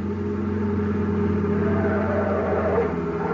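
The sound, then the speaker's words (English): A car speeding up a highway, apparently doing about 90, its engine roaring steadily and loudly in a sustained hum with no voices over it. “car coming up that highway now.”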